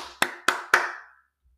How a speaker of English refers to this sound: Sorry if that was too loud. Apologies. Apologies if my clap was too intrusive.